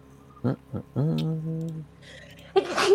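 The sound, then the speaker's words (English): A loud sneeze: a couple of short catching breaths and a drawn-out voiced inhale, then a sharp, hissy burst right at the end. “Bless you.”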